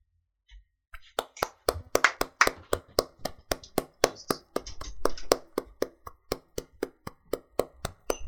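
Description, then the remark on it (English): Steady, rhythmic hand clapping from people at open windows and doors, thanking workers for their service; sharp claps repeat at an even pace for several seconds after a brief quiet start, with no voices or cheering audible. “I can only hear you guys clapping.”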